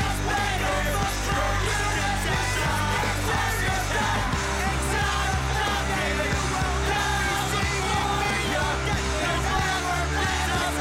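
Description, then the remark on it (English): A loud, dense rock song with men yelling the vocals over driving guitars and drums, with no horns, sustained at full volume throughout. “A bunch of sad dudes yelling.”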